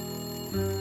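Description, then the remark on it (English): A phone rings with a steady electronic tone that jumps to a lower, louder pitch partway through. The ring is brief and clear, with no voices. “She was thinking about bending over to pick up the toast on the floor when her phone rang.”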